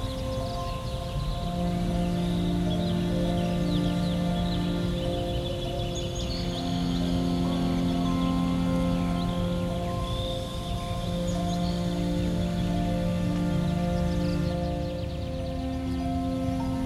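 Scattered high bird chirps and trills drift over a steady, sustained low drone of layered tones, with no voices. The birdsong stays fairly soft beneath the constant humming backdrop.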